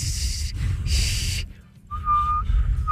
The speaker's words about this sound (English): Y'all can barely. Whistle.